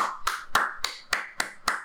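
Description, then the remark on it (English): Hands clap in a steady, even rhythm, about six or seven sharp claps, with a faint continuous hum underneath and no talking. “Clap them cheeks, baby.”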